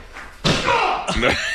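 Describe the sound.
A person runs shoulder-first into drywall: a heavy body slams into it with a loud, dull impact, followed by a second crunching hit about half a second later, with voices reacting over the noise.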